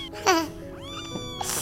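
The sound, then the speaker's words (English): A kitten, brought as a gift to a guest, gives a few short, high-pitched meows one after another over a faint, steady background hum. “Well, if you weren't famous, we wouldn't have brought you cats.”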